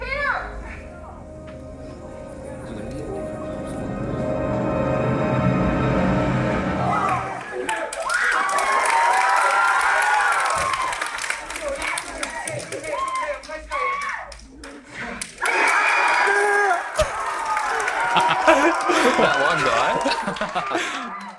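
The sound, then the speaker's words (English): A sustained, droning film soundtrack gives way to a packed cinema audience erupting in loud cheers, screams and laughter, rising in two big surges with a brief dip between them. “And this is just a testament to how good the movie was and how much an effect it had on the audience.”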